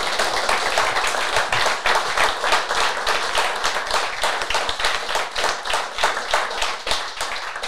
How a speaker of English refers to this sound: Can we have a little round of applause for the Saints Foundation? Thank you so much, guys.